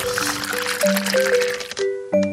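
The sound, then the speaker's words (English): Water pours steadily into a cup for drinking, its gurgling pitch climbing as the vessel fills, with a brief pause before a final short splash of pouring. “I'll get a little, pour you a cup of water.”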